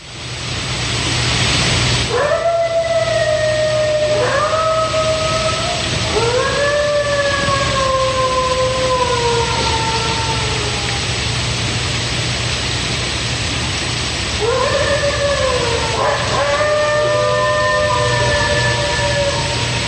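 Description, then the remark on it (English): A lone coyote, heard on a recorder just before its pack starts howling, lets out several long, rising-and-falling howls over steady rain-like hiss, pausing between calls, with a second set of howls near the end; no pack chorus yet. “Here's what a coyote right before the pack goes off.”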